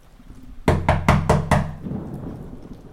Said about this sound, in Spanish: ¡Algo llama a la puerta, Panchito! El felino dice que no se atreve a abrir.